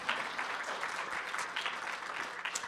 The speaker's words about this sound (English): This library is a Baltimore and national treasure, and that would be a good time to clap right there.